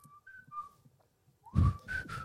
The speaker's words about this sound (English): These guys are meant to be like hiding and trying to find Black Ops, yet they're just walking around whistling like, "Hi guys, I'm pretty much here."